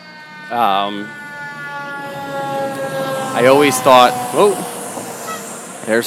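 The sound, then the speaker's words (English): A fire truck's siren wails in a steady, sustained tone throughout as the truck goes by, fairly loud, while someone keeps talking over it. “I told you this was live, so fire truck just went by.”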